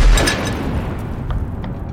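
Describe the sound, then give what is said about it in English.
A huge explosion just down the street in Kabul: a sudden heavy boom that rolls into a sustained, deep rumbling roar, with faint scattered rattles and clicks over it as windows rattle. No one speaks. “And this huge explosion happened just down the street.”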